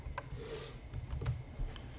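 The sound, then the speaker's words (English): Soft, irregular clicks of typing on a keyboard, a handful of scattered keystrokes over a low background rumble, quiet, with no one talking. “What am I typing?”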